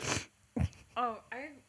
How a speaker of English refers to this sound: I should probably blow my nose because I keep sniffing into the microphone.